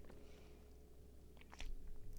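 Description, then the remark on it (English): A quiet sip from a drink: a couple of brief, wet slurping mouth sounds over low background hum, ending in a sharper, louder click. “Wait, let me take a sip of this first.”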